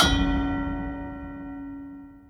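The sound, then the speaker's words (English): A single loud metallic clang strikes at the start, then rings on with a sustained, slowly fading tone like metal slamming against metal, with no other sounds around it. “There's a sound of metal crashing against metal and a single word appears below her fearsome visage.”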